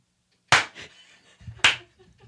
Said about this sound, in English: Darling, that robotic arm is clapping wonderfully. Can you hear it from here? Yeah, it's really loud. It's actually like as loud as if you were right here because the steel really...